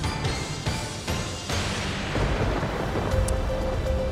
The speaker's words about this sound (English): Do you have a late-breaking news sound effect? I do. Let me hit the button here.